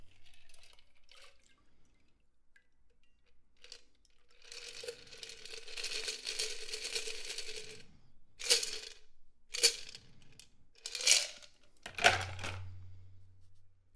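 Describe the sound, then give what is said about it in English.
A Rob Roy cocktail is poured through a strainer into an empty chilled glass: a steady stream of liquid for a few seconds, then several short splashing dribbles as the last of it drains. No one speaks. “So now I got my strainer. The glass is empty now and it's chilled. Now for the pour.”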